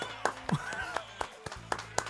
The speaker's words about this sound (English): We'll call this one Pinky. Round of applause, everyone, our studio audience, for Pinky.